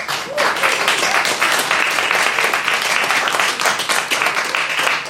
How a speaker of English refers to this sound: So Battlestar Sidica takes out the dystopia round. That applause was still really polite, though. Slightly more polite applause than the other team got.